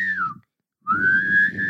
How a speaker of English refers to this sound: It's humming and whistling at the same time.